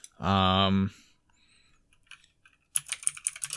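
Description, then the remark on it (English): A short, loud hummed voice sound comes first, then after a pause a quick burst of computer keyboard typing, several crisp keystrokes in rapid succession. “And I think I'm not totally being covert at all in my typing of on this keyboard.”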